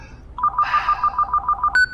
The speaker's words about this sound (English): And just as you're walking away, the phone rings. And she lets it ring like about three times before she answers it and kind of gives a sigh.